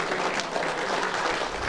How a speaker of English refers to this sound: Thank you so much. Can we have a great round of applause for the speakers?